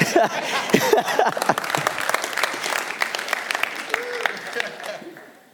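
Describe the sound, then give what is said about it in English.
An audience at a sermon breaks into steady applause of many hands clapping, with a few voices calling out at the start. The clapping continues, then thins and fades away over the final second. “I would have expected an applause or an amen, but I...”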